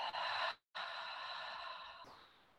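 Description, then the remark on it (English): A soft, breathy rush of air, then a brief pause and a long, slow exhale through the mouth, lips parted, that gradually fades out. It is quiet, with no talking. “Let your lips separate and let the breath out through the mouth.”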